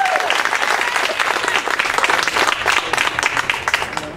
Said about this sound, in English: One last big round of applause for Pam.